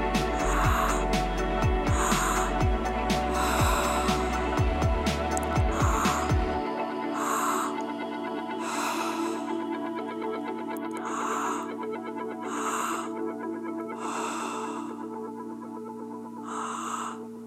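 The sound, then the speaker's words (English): Deep, rhythmic breathing during a breathwork practice repeats in steady, forceful cycles over a sustained musical drone, each breath audible, with no talking. “Keep breathing. We're more than halfway through this practice.”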